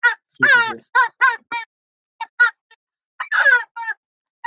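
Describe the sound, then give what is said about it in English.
A parrot named Kiki squawks in a string of short, harsh, loud calls, some raspy and drawn out, bunched irregularly with brief pauses between them. “Oh, and one of the other guests who came to say hello on our previous series was Kiki, who's a parrot.”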